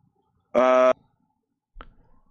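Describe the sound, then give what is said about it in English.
A single short, blaring blast from an emergency siren outside, loud and steady in pitch for under half a second, followed by quiet and a faint thump. “More sirens on my end.”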